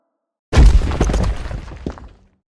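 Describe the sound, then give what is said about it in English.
A heavy crash of something smashing through the wall of a bungalow instead of its door: a sudden loud, booming impact followed by about two seconds of crackling, clattering debris that fades out. No voices. “That was no door.”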